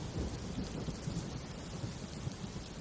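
Low, rolling thunder from a storm, heard aboard a ship, rumbles steadily beneath a constant hiss of heavy rain, a dense stormy wash with no voices and no clear single crack or break.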